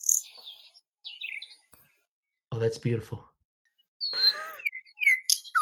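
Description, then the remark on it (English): Oriole song played from a phone: bright, whistled phrases and chirps come in short bursts, pause briefly while a person speaks, then resume with more melodic whistles and sharp notes. “An Oriole.”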